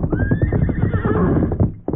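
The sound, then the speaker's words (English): A horse, Silver, whinnies loudly over the rapid thud of hoofbeats as it comes fast toward the Lone Ranger's camp with an empty saddle, the neigh rising and wavering above a steady galloping rhythm that cuts off abruptly near the end. “It was less than an hour later at the Lone Ranger's camp when Tonto heard the approach of familiar hoofbeats. He hear horse come plenty fast.”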